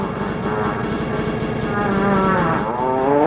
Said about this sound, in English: Where'd you find that fart sound from? Amazing. Well, if I told you, it'd be embarrassing for me, so I'm not going to tell you where I got that fart. I'll let it be. It was real, wasn't it? It's not my fart.